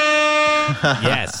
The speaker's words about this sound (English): Yes. I've been looking for that air horn for far too long. Far too long.